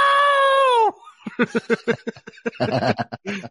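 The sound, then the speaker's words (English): A woman lets out a long, high, piercing wail that breaks off, followed by a rapid run of choppy, gasping sobs and cries, loud, heard on a TV show recording. “And that's when the screeching reaction happened.”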